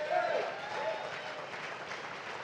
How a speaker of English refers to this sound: Isn't it funny, that kind of half-hearted clap there? Come on, if we're going to clap, let's clap.